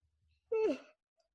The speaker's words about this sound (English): Tired? Yeah, see, sorry. We needed that break. I know, I had that yawn in real quick.